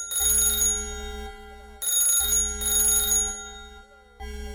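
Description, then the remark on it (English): A telephone rings in repeated bursts of bright, rapid bell trills, three rings with short pauses between, loud, over a steady low hum with no talking. “Mix, don't answer the phone.”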